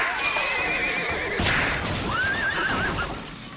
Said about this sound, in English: Toronto, after the Maple Leafs won the series against the Tampa Bay Lightning, a drunk man was arrested for slapping a police horse on the hindquarters. Okay. This is what it may have sounded like.